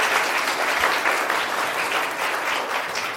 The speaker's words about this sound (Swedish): En liten applåd kanske. Tack.